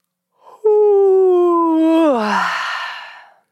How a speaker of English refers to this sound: Let's do one more. I can feel a yawn coming in. Deep breath in and deep breath out, yawn.